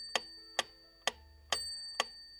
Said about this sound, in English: Here's what it is. … used a typewriter, and he rigged it to make it sound like a metronome.